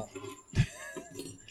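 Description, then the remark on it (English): Keys being handed over: a brief clink and jingle of keys with a soft thump as they're set down, followed by a faint, scattered rattle, fairly quiet, with no talking. “Why are you handing this to me? Because those are your keys, and then you always get mad at me if I lose your keys.”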